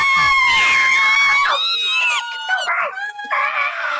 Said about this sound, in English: All the people outside began screaming when they saw Godzilla.